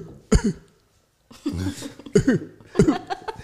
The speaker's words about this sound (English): Hit the Ferris Bueller cough because he's faking it.